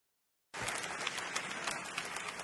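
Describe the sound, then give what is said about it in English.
An audience bursts into sustained applause after a brief silence, a dense, steady wash of many hands clapping at once, fairly loud and continuing to the end. “I don't know why people are clapping.”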